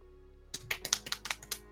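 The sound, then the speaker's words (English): Rapid typing in Notepad on a computer keyboard: about eight quick, crisp key clicks in an uneven rhythm, moderately loud, with no voices over them. “I'm just gonna write this on my computer and just let it sit.”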